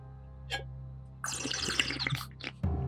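A brief wet slurp, then a longer bubbly, gurgling sip of coffee with soft liquid clicks, ending in a low thump, like a cup set down; a practical Foley effect. No one speaks.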